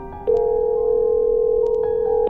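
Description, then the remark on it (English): A dialed phone call's ringback tone sounds once, before the call goes to voicemail, as a single steady electronic tone, clear and fairly loud, holding unbroken for about two seconds with no voices around it. “It rang once and went straight to voicemail.”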